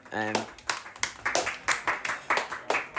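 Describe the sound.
A round of applause: sharp, distinct hand claps in a steady, fairly quick rhythm, about three per second, following a brief voiced sound at the very start.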